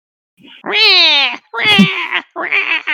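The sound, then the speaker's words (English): Three drawn-out, cat-like meows in quick succession, loud, each with a wavering, falling pitch; it may be a human voice imitating a cat. “Sounds like a cat.”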